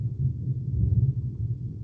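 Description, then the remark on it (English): A deep, continuous low rumble rolls on steadily, a crazy thunderstorm raging outside with thunder grumbling; no voices are heard. “There is a crazy storm raging outside.”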